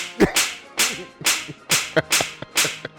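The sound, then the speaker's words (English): A rapid series of sharp slap sounds, about six crisp cracks spaced roughly half a second apart, loud with no talking. “Slap for that.”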